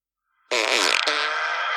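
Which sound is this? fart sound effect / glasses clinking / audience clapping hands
fart sound effect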